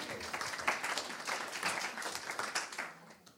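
An audience applauds the speaker's son, who has been called up front, steadily for a few seconds, a dense wash of many hands clapping at a fairly even, moderately loud level with no clear voices on top.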